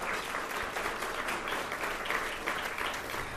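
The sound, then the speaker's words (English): An audience applauds steadily for the law firm DLA Piper, a dense wash of many hands clapping at even loudness throughout, with no pauses or voices breaking through. “let's give an applause right now for DLA Piper and another one when he comes.”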